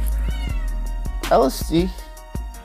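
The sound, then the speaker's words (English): Two drawn-out meows from a female cat, one after the other, fairly loud, over a steady thumping beat with low background hum. “What did my cat want?”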